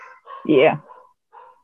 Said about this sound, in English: Oh, I hear some pups. Whose pups are those? They're locked up in as far away as I can get them, but they're gonna bark.